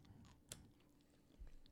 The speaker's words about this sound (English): Could you stop chewing in the mic? It's driving me crazy.